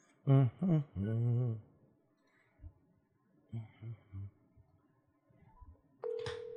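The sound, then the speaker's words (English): A short series of electronic telephone tones and beeps sounds as a cell phone is dialed, with brief pauses between them, then a steady tone at the end. “Let me get old Jason's cell phone here.”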